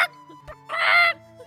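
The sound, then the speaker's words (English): A voice imitates a chicken, producing one short, loud, squawky cluck, preceded by a couple of faint, brief vocal bits and then quiet. “he started to cluck and pee.”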